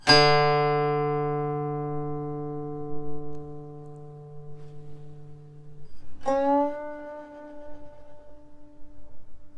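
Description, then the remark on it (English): A guqin string plucked with the index finger, twice: a low, resonant note rings and slowly fades, then a second pluck sounds a slightly higher tone with bright overtones. No one speaks. “You may already notice that one note being plucked can be varied to different tones.”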